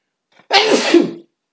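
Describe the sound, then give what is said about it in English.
A single loud sneeze bursts out after a faint intake of breath, a broad noisy blast lasting under a second before cutting off into silence. “Bless you.”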